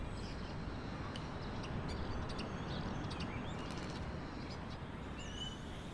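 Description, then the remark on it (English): Scattered birds chirp and tweet in a quiet city neighbourhood, short high calls repeating every second or so over a steady low background rumble, with a brief whistle near the end. “I can hear birds prominently.”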